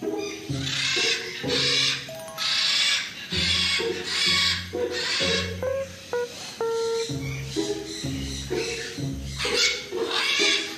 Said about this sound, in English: I came by early in the morning, before 9 a.m. As I reached Parrot Paradise, the macaws, cockatoos and parrots were still warming up.